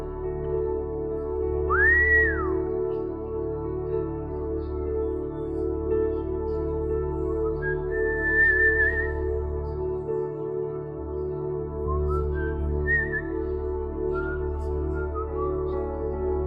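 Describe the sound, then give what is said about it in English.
Several short whistled phrases with rising, sliding pitches drift in and out over a steady, sustained keyboard pad. The whistles are moderately loud and spaced apart, with no talking. “He whistles. He whistles, says Isaiah.”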